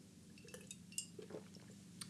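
Glasses clink together in a toast, a few light taps with one brighter ringing clink in the middle, quiet over a low background hum, with no talking.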